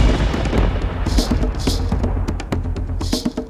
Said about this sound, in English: Thunder and lightning in the night sky.